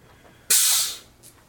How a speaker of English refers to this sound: Is that just carbonated water? Yes. Soda streams are pretty good.